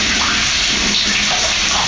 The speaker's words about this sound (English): So I'm going to rinse it now. And like I said in the first place, just a gentle rinse will clear off the little bitters. So I'm just going to run cold water on it and, you know, make sure that all of it gets wet.